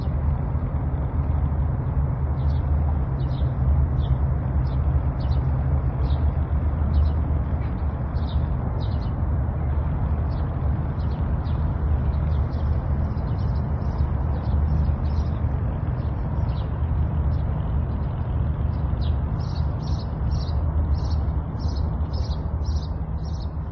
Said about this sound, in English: Which is basically like, yeah, boat traffic and birds and fishermen. I could hear the birds really clearly in that.